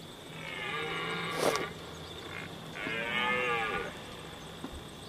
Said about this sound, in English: We've heard that before, but go see Red Stag Roar. Try Google Red Stag. Yeah, there it is. Yeah, listen to this thing. It's crazy.